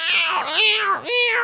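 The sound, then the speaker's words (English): Two cats, one of them black, yowl loudly in a fight as one locks its jaw on the other, with drawn-out wavering howls that rise and dip in pitch, briefly breaking before another harsh wail. No one speaks. “The cat pounces, locks its mouth on the cat's eye.”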